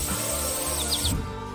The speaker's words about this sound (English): Let's get out of the hot jungle and head to Central Europe. You're in the middle of a sunny green meadow. Colorful flowers bloom around. Birds sing and bees buzz by.